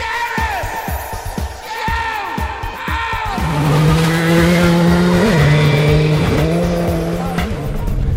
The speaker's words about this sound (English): Be warned, this episode features the sound of some classic rally cars and a Welsh win.